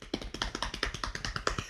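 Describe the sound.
A quick drum roll tapped out on a tabletop: about ten fast, evenly spaced knocks in a steady rhythm, fairly soft, with no voices over it.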